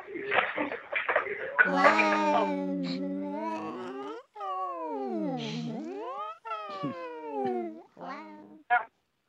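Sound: cat meowing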